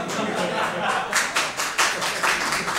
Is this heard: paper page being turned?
no